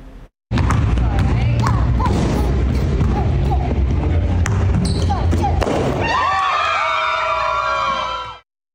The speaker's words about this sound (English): He slammed, as you saw there, the basketball into the net, tied up with a balloon full of pink powder. It's going to be a girl. It all happened at a basketball training facility in Colorado.